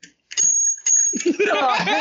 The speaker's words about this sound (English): Oh, Jesus Christ. Oh, I get a bell.